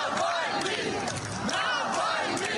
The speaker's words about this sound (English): Outside his funeral service, crowds chanted his name.